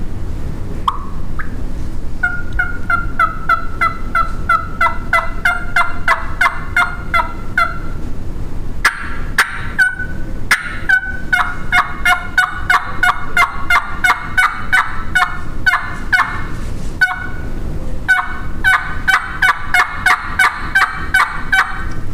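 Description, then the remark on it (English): Runs of raspy hen turkey yelps made on a turkey call, air channeled over the middle of the call to add rasp, each series steady and rhythmic with brief pauses between, loud with no talking. “when I'm gonna get a little bit louder or do like a plain yelp and put just a little bit of rasp in it”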